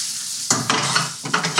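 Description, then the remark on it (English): Tomato basil sauce sizzles in a hot pan with a steady hiss while a utensil stirs through it, making several quick scraping strokes at an uneven rhythm. No one speaks. “So straight from the pan”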